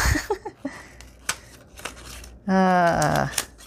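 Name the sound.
scissors cutting paper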